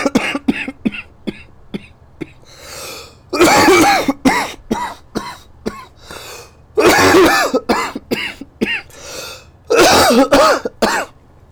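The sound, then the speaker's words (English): A prolonged coughing fit after smoking Kush: bursts of harsh, hacking coughs with raspy throat-clearing between them, building to several loud, strained clusters. No talking, just repeated wheezy coughs. “It's not the Rona, it's the Kush.”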